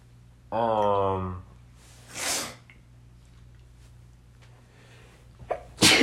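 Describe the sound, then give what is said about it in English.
A loud sneeze: a drawn-out voiced wind-up followed by a sharp, breathy burst, then a quiet stretch before another abrupt, loud burst at the very end. “Bless you.”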